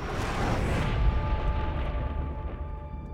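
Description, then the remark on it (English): At the start of a movie trailer, a jet aircraft roars past in a loud, rumbling rush with a thin whining tone, its bright hiss fading after the first second while the deep roar keeps rolling. “It starts off with an airplane.”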